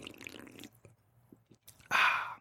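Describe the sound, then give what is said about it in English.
A sip from a red can: a soft slurping gulp, a few faint swallowing clicks, then a loud, breathy exhale of satisfaction. “Anyway, let's get this shit cracking after I take a little bit of a sip.”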